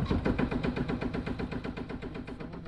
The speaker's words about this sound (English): It's one of those precious Seattle summer afternoons, sunny and slightly crisp on the water. And as we motor away from the dock,